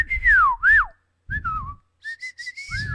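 A person whistles a wavering tune: two sliding, swooping notes, a pause, a short falling phrase, then a run of quick repeated chirpy notes ending in a downward slide. Clear and fairly loud, with no talking.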